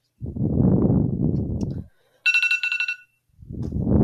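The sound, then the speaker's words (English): A phone alarm sounds a bright electronic tone in two quick pulsing bursts lasting under a second, set between stretches of low, rumbling noise. “That probably was for the alarm for the time that you've, because we're in 2 different time zones.”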